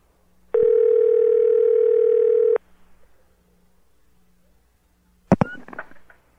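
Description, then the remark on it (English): A loud, steady telephone ringing tone after dialing *69 to call back the last caller sounds once for about two seconds, followed by a quiet line hiss and then a sharp clattering clunk near the end. “Who is this? Who have we rung?”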